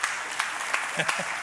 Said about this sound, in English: Yeah, they don't applaud that way when I come out.